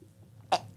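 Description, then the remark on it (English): A single sharp sneeze bursts out, brief and fairly loud against a quiet, low hum, followed by a faint breathy sound. “That was the most beautiful sneeze.”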